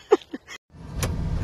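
A brief snatch of voice, a short pause, then a steady low rumble of a running car engine heard from inside the vehicle, moderately loud, holding to the end.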